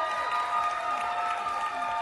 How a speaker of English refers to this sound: Audience, give your contestants a round of applause.